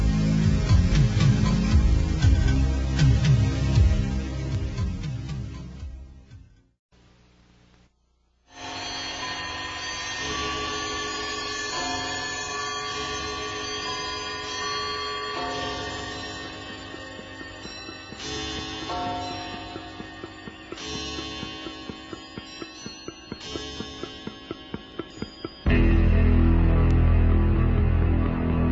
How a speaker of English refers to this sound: So if you would, everybody, stay exactly where you are while we resurrect a little bit of different bumper music. Here it comes.